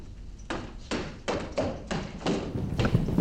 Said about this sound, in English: And she's going to keep running down the hallway. She's not going to stop to see if you guys know each other. And you can hear footsteps chasing them. Seems like the ship security, ship crew are chasing them.